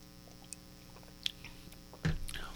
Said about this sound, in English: So let's take a sip of this.